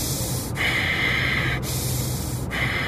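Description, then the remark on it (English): A voice imitates the heavy, rasping breathing of someone having a nightmare, loud, with about three labored inhale-exhale cycles in quick rhythm and no talking. “All while this is happening, I'm breathing like this.”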